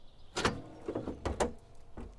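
The hood of a 1969 Judge car being opened to look at the engine: a few sharp metallic clunks and latch clicks spaced over about two seconds, with a faint mechanical rattle between them and no voices.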